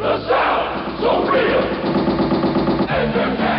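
Rapid bursts of toy-gun gunfire, a steady machine-gun rattle of sharp repeating pops that runs loud and continuous for a few seconds, with a brief stutter near the end.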